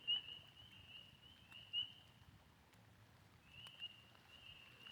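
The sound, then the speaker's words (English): A faint, high-pitched chorus of spring peeper frogs calling at night by a stream in light rain at about 65 degrees, their peeps blending into a steady shrill drone that pauses briefly midway, over a low background rumble. “The Hunt for the Elusive Peeper”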